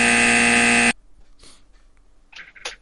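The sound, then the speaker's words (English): A game show buzzer blares one loud, harsh, sustained note for just under a second, then cuts off abruptly, leaving a few faint rustling sounds. “Oh, the buzz.”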